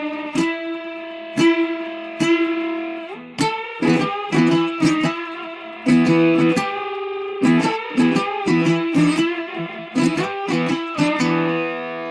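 An electric guitar run through an effect, one note bent against the same note on a different string, its sustained notes wobbling with a wild, growling vibrato as two pitches beat against each other, played alone in a loud, rhythmic series of sharp plucks.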